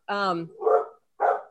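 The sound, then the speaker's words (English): A dog barks three times in quick succession, loud, at a man putting fertilizer on the lawn, from behind a patio: a sharp, tonal first bark followed by two rougher, huffier ones with brief pauses between. “Sorry, I'm distracted by the fact that the dog is about ready to jump through the patio and attack the guy who's putting the fertilizer on the lawn.”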